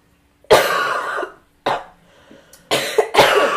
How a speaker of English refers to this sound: Wow, look at us coughing.